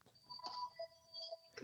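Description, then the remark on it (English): A house phone with two handsets rings with bright electronic tones, short chirping bursts repeating over a steady high beep, fairly loud with no one talking. “Yeah, well, that's the house phone with two handsets in the room.”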